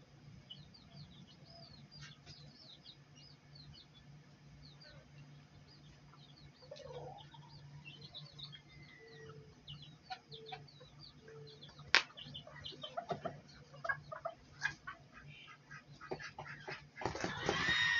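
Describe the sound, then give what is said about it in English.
Chickens cluck and squawk in irregular, agitated bursts over a steady low hum, growing louder and busier toward the end with a sudden noisy rush like flapping. “Got some angry chickens.”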